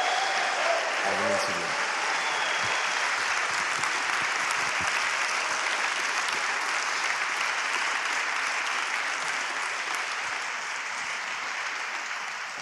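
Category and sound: crowd, audience applause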